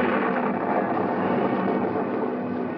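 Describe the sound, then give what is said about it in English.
A steady, unbroken roar of storm noise, like heavy wind and rain, holds at an even loudness throughout, with no distinct thunderclaps standing out and no voices. “Now, another storm.”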